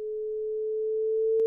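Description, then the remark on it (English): A sonified gravitational-wave chirp from a detection at the LIGO-Virgo observatories: a pure electronic tone that swells steadily louder and creeps slightly upward in pitch over about a second and a half, ending with a brief sharp click. “You may be thinking, hang on, didn't they already detect gravitational waves at the LIGO-Virgo observatories a few years ago? And if you've been listening to this podcast for a few years, then you'll know that they sounded like this.”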